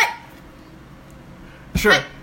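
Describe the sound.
After a quiet stretch, a child makes one short, loud bark-like sound, a voice imitating a dog's woof.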